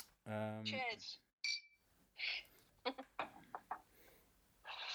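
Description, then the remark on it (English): A glass taps against a bottle several times in a quick, uneven run of bright clinks, after a burst of voice and with faint noise between the hits. “I can't make a clink noise without another glass. Wait, I've got a bottle.”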